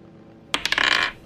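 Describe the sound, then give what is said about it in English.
Dice clatter across a hard surface in a quick burst of sharp clicks and rattles, about half a second long, fairly loud, with no voices, as a couple of checks are rolled in a game. “I'm gonna roll a couple of checks.”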